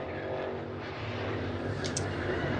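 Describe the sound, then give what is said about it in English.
A steady, loud roar of several racing engines droning together, with a brief higher-pitched whine rising near the end as cars push around the track. No voices are heard. “A lot of cars.”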